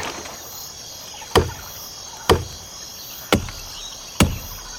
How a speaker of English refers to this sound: I'm just mashing space, and I'll know when it's done when I hear a tree chopping sound. Tree falling sound, rather.